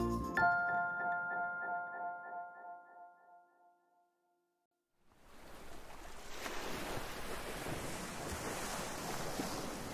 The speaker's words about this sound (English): We're at the beach. Wow, look at those ocean waves. I love how the ocean looks like it can go on forever.